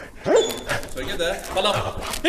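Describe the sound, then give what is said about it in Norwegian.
A police dog named Balder, trained to defend itself and its handler, lets out a sharp bark early on during bite training, followed by excited whining and yelping, with people talking over it throughout. “Og hvis de gjør motstand, enten sparker etter hunden eller går til angrep på meg, så er Balder her trent til å forsvare seg selv og fører.”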